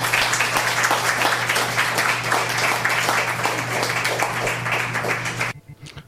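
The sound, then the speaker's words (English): An audience at an open mic poetry reading claps steadily for a poet in a dense, sustained round of applause for about five seconds before it stops abruptly, with a low steady hum underneath throughout. “let's give him another hand.”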